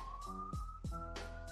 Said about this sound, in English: because I can hear that siren.